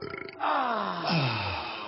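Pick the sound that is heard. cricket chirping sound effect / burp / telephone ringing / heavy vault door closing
burp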